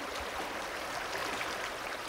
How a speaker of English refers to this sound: In a high basin below the Continental Divide, where a snow-fed creek flows through low sagebrush